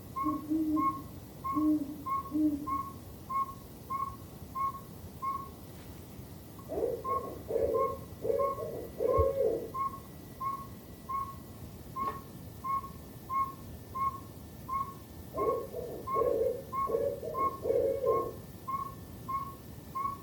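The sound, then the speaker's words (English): Barred, saw-whet and great horned owls calling at night: a steady series of evenly spaced high toots runs throughout, while deeper rhythmic hooting phrases come in bursts, some loud, others softer. “Or even active at night, like these owls, the barred owl, saw-whet owl, and great horned owl.”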